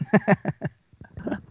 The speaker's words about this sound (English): Oh my God, the cough. That's terrible.